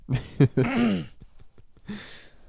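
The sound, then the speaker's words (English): A man coughs and clears his throat in a few harsh, raspy bursts, followed by a short pause and one more gravelly throat-clearing rasp. “I need a cough drop or something.”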